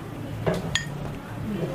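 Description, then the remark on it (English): Two quick glassy clinks, the second one ringing brighter with a short tonal shimmer, as beer is poured during practice for the Master Cicerone exam, over a steady low murmur of background voices and room hum. “He's pouring beer and he's trying to talk and he's answering a tough question.”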